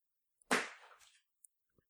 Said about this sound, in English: That was a shoe.